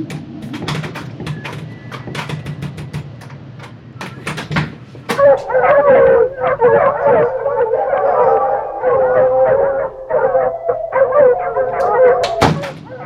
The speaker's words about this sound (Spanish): hay una jauría de perros afuera.